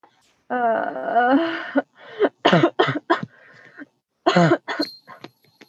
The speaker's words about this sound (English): The cough will die with its master, I think.